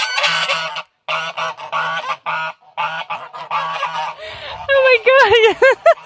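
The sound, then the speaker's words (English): Geese at a little farmstead on Exmoor honk loudly in a rapid series of nasal bursts, followed by a brief breathy hiss as a goose lowers its neck and flaps its wings, and then a flurry of higher, rising squawks. “So we've driven about half an hour, and we've just arrived next to loads of, what is it, a little farmstead with geese.”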